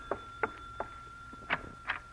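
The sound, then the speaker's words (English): A front door bell rings shortly after 8 o'clock at night, in a series of five short, sharp metallic bursts at uneven intervals, over a thin, steady high-pitched tone, with no voices. “And then shortly after 8 o'clock that night, the front door bell rings.”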